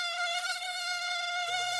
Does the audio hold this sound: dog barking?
no